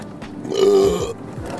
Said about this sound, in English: excuse me. Oh, the burps and this and that. Sorry about that. It's like every time I get my little domain, you get out of work or wherever, and now you're in your little comfort spot, and then, like, the gases come out, the burps, the farts